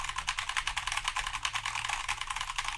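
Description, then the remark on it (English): Rapid, continuous typing on a computer keyboard while entering a password to open an email account, a dense stream of crisp key clicks at an uneven pace, with no voices over it. “A lot of typing to get to the email.”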